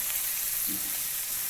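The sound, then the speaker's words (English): Steady, crackling sizzle of food frying in oil in a hot pan on a stove at high heat, a dense hiss spread across the highs with no voices, holding at an even, moderate level throughout. “Are you on high heat? Is your stove stuck? High heat. I mean, it's cooking.”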